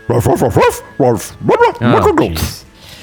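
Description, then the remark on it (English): A dog barks loudly in several quick, yappy bursts, some doubled up, spaced irregularly before trailing off into quiet. “So let me translate, because I guess I talk dog now.”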